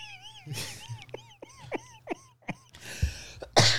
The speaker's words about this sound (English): That's a second cough. Yeah, that's fine. It's toward the end of the show. I think I earned it. Long COVID's back. That was only because I was laughing.